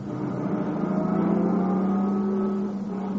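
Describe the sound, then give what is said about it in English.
A car engine hums loudly, its pitch rising and wavering slightly as the vehicle creeps forward and pulls up at a cabin. It runs steadily for a few seconds with no voices. “Maybe his car's around on the other side. Let's pull up a little.”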